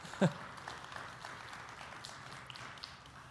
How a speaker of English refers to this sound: Yeah, you can clap about that if you're excited about it.